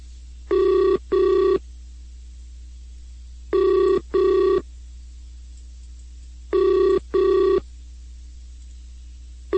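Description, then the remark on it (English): A telephone rings during a call placed on the SciTech Show, an electronic double-burst tone repeating three times at even intervals with silent pauses between, over a faint low hum. No one picks up and no voices are heard. “And Infinite's not answering his phone.”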